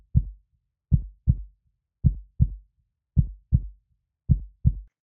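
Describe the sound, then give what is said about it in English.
A steady human heartbeat, each beat a close pair of deep, muffled thumps repeating about once a second, heard alone and clearly with nothing else around it. “This is the sound, the rhythm of your heartbeat.”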